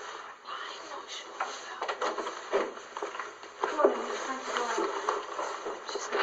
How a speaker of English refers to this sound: Why is there so many knocks? They're loud.